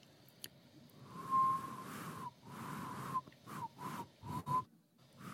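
A failed attempt at whistling: a series of breathy, airy blows, mostly toneless, with only a thin, fleeting whistle note flickering through a couple of them. No one speaks.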